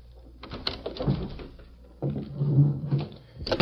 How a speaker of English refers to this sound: Early the next morning, Red Bassett unlocked the door of the Clarion office.